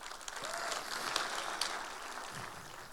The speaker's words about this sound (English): So can we give her a round of applause, please?